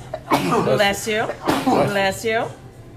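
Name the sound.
sneeze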